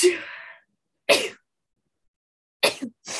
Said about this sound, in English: I'm going to sneeze.